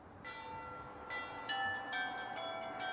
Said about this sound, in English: The bells ringing out from the golden-domed cathedral named after St. Michael, appropriately enough, the protector of Kiev.